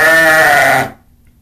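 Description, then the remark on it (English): A single loud sheep bleat with a wavering, nasal tone lasts just under a second, then stops abruptly into near silence. “Was that a cow? They're a sheep.”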